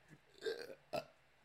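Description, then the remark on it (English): Two quick involuntary hiccups, a longer throaty one followed by a sharper, abrupt catch about half a second later, with no talking around them, as a person tries to get rid of their hiccups. “I'm just trying to get rid of my hiccups.”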